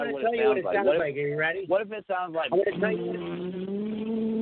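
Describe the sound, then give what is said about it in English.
A voice imitates a revving stock car engine, with droning, rising and falling vocal tones and a brief break midway before a sustained rumble. “Oh, it sounded like an actual race car. It didn't. I think we it sounded like an actual stock car.”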